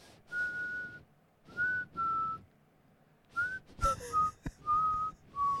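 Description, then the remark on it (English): A person whistles a simple tune, a run of clear held notes at a steady pitch with short breaths between them, fairly airy, with no talking. “Like, let me hear your regular whistle.”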